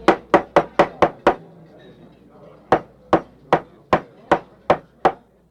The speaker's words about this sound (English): Senator Biden, the chairman of this committee, is about to open the final session with a nod of his head, a flip of his hair, and a bang of his terrifying gavel.